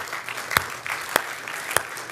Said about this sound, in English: The wonderful news I have for you today is this. Jesus has won the battle for your soul. I reckon we can applaud. That's good.